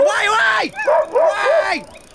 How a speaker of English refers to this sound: Is that your dog or someone's outside? No, it's someone else's dog. He keeps coming after me down the street.